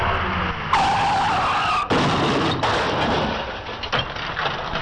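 A car skids with a loud, drawn-out tire screech, followed by abrupt noisy bursts that could be an impact, all over a dense rush of road noise.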